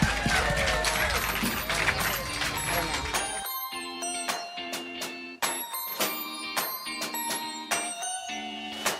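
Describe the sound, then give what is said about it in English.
A dense burst of clapping from an audience lasts about three seconds, then cuts off into a bright musical jingle with steady, punchy beats. “Can we get thank a round of applause you.”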